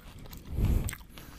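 Someone chews a mouthful of fries, a soft moist crunching that swells to a louder burst in the middle and then fades, with no talking over it.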